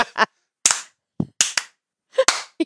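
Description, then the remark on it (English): Sharp hand claps in a slow clap, around eight of them, coming slowly and unevenly with short gaps between, no one talking. “It was my favorite is just like to do like a slow clap, like if somebody just really lets me loose.”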